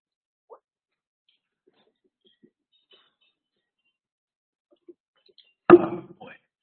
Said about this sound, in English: I'm just going to take a sip right now.